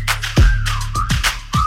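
A gliding whistle tone slides down and rises again over a thumping hip-hop beat, with heavy bass kicks hitting roughly every half second.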